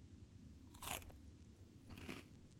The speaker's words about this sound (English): That's when he started devouring the vegetables. That must have been left over from before I moved. His teeth grinding them into nothingness with just a few bites.